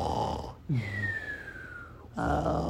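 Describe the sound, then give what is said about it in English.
A voice imitates a cartoon snore: a loud, raspy snoring breath, then a long, thin whistle gliding steadily downward, followed by another rough snore. “I couldn't think of any cartoon examples where there was a whistle and then a snoring sound.”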